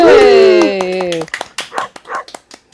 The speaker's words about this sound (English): thank you for the barking dog. That's brilliant. Fantastic.